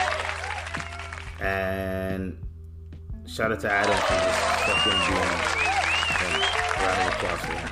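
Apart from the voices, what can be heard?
applause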